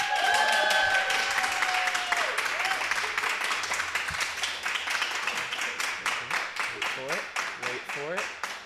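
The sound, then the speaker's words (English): A small audience bursts into enthusiastic clapping with a few cheers and high whoops, starting loud and dense, then thinning into scattered individual claps as the applause winds down. “So before you dislike us, if I could just get a really confident like clap, cheer, somebody wooing, not too many people, because they'll know that I cut this part out.”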